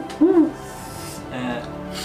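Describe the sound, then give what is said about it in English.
A person imitates an owl with one short, rounded, fairly loud hoot, followed by quieter murmuring background sound. “Doing owl imitation.”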